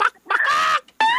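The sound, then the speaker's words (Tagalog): A person imitates a chicken's cluck: a short squawk, then a longer drawn-out bawk, then another sharp one, loud and nasal, with no other talking. “Kung napa yung manok karun, may na, bak! Lagi manok niya, bak!”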